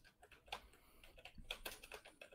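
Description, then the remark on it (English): Quick, irregular clicking of keys on a computer keyboard, a steady patter of light taps with a few louder strikes, heard alone without any talking. “I'm typing, so just tell me what they are.”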